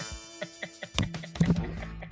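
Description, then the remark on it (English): A microphone gets knocked over: a few soft, evenly spaced taps, then a sudden loud thump followed by a scrambled burst of clattering, rattling handling noise that trails off. “I got so excited I knocked my microphone over.”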